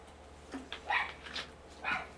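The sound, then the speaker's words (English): A female dog gives several short, sharp barks and yips in quick succession at a door, with steady low hum underneath and no one talking. “Because she's literally barking at the door.”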